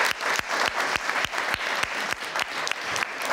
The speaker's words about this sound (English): I want to give everyone a round of applause for being here for tonight. Thank you again, please, if you join us.